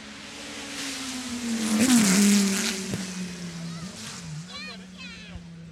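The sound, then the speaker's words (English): A Dodge Viper GTSR race car rips past at speed on a racetrack just after a bridge, after taking the first turn, its engine roar swelling to a loud peak and then fading into a steady drone. “This Dodge Viper GTSR is going to rip past, and I'm going to shut the hell up for this because it's going to sound absolutely incredible.”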